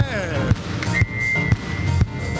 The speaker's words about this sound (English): To see you clapping those hands just like this.